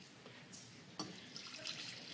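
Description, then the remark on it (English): Water being poured from a jar into a vase, a soft, steady splashing and trickling that starts with a small splash and keeps running quietly, with no voices. “if you could actually pour that water into the vase”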